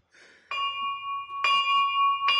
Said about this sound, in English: Then, at the hour of the ox, whatever the fuck that is, she started to hear a bell ring.